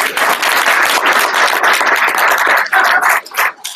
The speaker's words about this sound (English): Round of applause